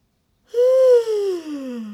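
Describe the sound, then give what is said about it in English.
A single long yawn with a stretch as a warm-up before singing: a voiced breath that starts fairly high and slides steadily down in pitch over about a second and a half, alone with no talking. “Let's start with a good yawn stretch.”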